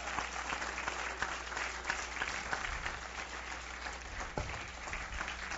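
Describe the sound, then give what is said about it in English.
A large church audience at Grace Church applauds steadily, dense overlapping claps filling the whole stretch at an even, fairly loud level, with no one speaking over it. “Feel free to clap and cheer again.”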